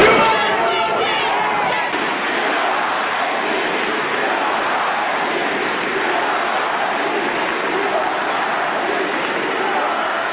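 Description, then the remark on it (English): A crowd of protesters shouts and jeers during a commencement speech at the University of Notre Dame, protesting the speaker's pro-choice stance on abortion. It is a sustained, loud roar of overlapping voices, with no clear words standing out, steady throughout. “The protesters, they made a little noise.”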